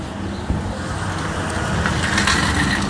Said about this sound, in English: Sorry, that was a truck going by.